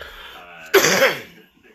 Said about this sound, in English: I'm gonna be coughing through this, so.